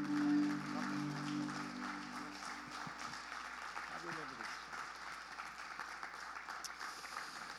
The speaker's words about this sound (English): Amen. Can we give the Lord a clap offering in this place? Come on.